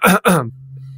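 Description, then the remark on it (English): Two quick, loud coughs, harsh and throaty like clearing the throat, followed by a faint low steady hum. “You were coughing while I was talking.”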